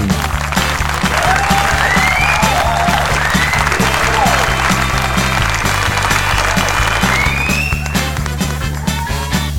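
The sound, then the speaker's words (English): Loud, dense canned, pre-recorded studio audience applause with scattered whoops and whistles, steady for the whole stretch, running over a rhythmic low musical backing before tapering slightly at the end. “Thank you for tuning in to The Hen House, the one podcast pre-recorded live in front of a canned studio audience.”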